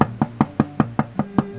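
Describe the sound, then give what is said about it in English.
A quick, evenly spaced series of about eight knocks on a weather-beaten wooden door, fairly loud, each rap with a hollow resonance, and no voices. “I could hear the waves beating against the rocks as I walked up the path and knocked on the weather-beaten door.”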